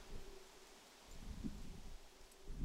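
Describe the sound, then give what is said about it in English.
A steady, soft rustle of fall leaves stirred by wind on a very windy autumn day, with low gusty rumbles swelling and fading throughout; no voices, just a continuous outdoor breeze. “I feel like this is our first, like, really, really windy fall day.”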